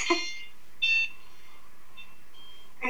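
A home security alarm chimes with bright electronic dings, triggered as a car drives up and someone moves outside the garage, several tonal bursts repeating at uneven intervals, clear with no one speaking.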